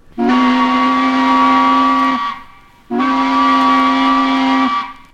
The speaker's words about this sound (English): Even the sharp whistle of a tugboat.